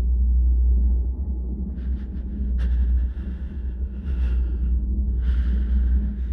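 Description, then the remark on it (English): A steady, loud airplane engine drone in flight, a deep continuous rumble with faint higher whining tones that rise and fade at intervals. No one speaks. “What a nice, soothing sound the plane's making, am I right?”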